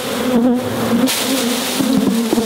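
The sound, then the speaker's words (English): A dense, steady drone of many honeybees buzzing together inside a hive, loud, with a constant hum and occasional sharper wingbeat flickers rising out of the swarm. “So we should do something with this hive, huh?”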